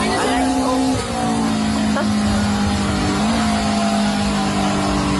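A car engine revs loudly and steadily at a graveyard in Kilcully, its droning pitch dipping and climbing again a few times over several seconds, with no talking.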